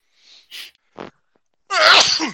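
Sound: sneeze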